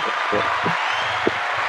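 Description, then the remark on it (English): A soundboard applause effect: a steady, dense wash of clapping that holds at an even level for under two seconds, with low murmuring voices faintly underneath. “And can I get that round of applause? Can you put that up?”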